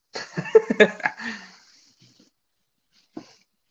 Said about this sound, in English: Dude, that cat is going crazy, bro. Oh, dude, my. I like pet him like I just patted him like so many times, and now he just wants more.